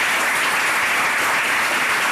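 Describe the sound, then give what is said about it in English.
A debate audience claps for the debaters steadily, a dense wash of applause that stays loud and even from start to finish with no voices breaking through. “And can I get a round of applause for our wonderful debaters?”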